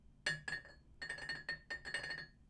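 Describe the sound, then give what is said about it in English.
A small pendulum repeatedly clinks against glass, producing bright ringing tones that sustain and overlap like a singing bowl, with several quick strikes in an uneven rhythm, fairly quiet; it is being used to clear the energy of cards. “But it kind of acts like a singing bowl and this kind of acts like a pendulum.”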